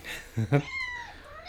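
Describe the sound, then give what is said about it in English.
A female cat meows: two short, bright chirping calls in quick succession, then a longer, softer drawn-out meow trailing off. “the cat. She has such a lovely voice.”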